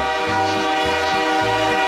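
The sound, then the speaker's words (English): A loud, sustained train horn blares steadily with a rich chord of tones, continuous, while low rumbling pulses of a train roll underneath. “I love trains.”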